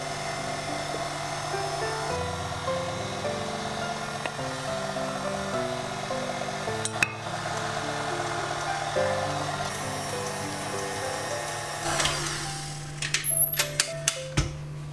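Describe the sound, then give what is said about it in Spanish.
An electric mixer beats cake batter with oil and cream, a steady whirring drone without pause, a constant mechanical hum with tonal shifts as the speed is lowered, ending with a few sharp clicks and knocks. “Mientras está batiendo la masa, añado la levadura a la harina y la integro bien.”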